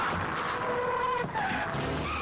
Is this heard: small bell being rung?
no